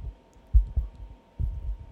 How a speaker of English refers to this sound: That's my heartbeat.